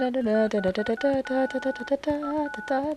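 A quick tune tapped out as a series of short electronic beeps on a cordless phone keypad, each note held briefly at a different pitch, fairly loud, with no talking. The tune is a song sung when the bride and groom first walk into the wedding hall after the ceremony.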